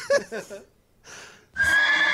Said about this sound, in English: Poor horse. According to this... Screaming, neighing in pain.